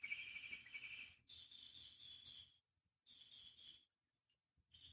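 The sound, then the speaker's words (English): Springtime birds singing outdoors in high, steady trilling bursts, each lasting a second or two and separated by short pauses, over a faint low background rumble, with no voices. “And as I'm recording this, I know you can hear the springtime birds.”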